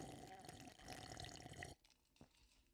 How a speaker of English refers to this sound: So, I'm going to sip this water.